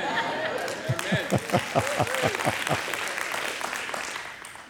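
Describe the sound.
An audience claps together in a quick, steady rhythm of about a dozen loud claps, then the beat dissolves into scattered applause and crowd noise with voices mixed in.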